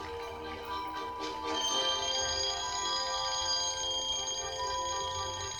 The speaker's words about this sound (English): You're having a dream and then you hear like something like that, or you hear an alarm go off like while you're in your dream and shit just gets weird and then you end up waking up.